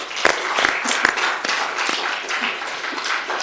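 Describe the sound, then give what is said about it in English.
An audience claps steadily at the close of a live show, a dense wash of many hands with a few sharper, louder claps standing out. There is no talking over it. “I think we're ready to call it a wrap. First clap, okay.”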